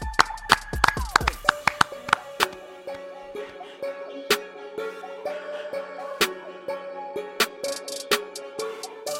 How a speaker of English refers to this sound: All right? And let's clap it up.